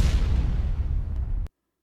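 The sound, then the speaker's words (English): A small explosion sound effect: a sharp blast that rolls into a rumbling, crackling boom for about a second and a half, then cuts off abruptly into silence. “That was a small explosion.”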